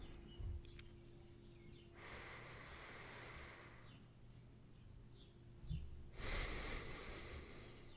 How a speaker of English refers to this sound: Before we read our scripture today, why don't we pause for a moment and attend to our breath, breathing in deeply and breathing out fully.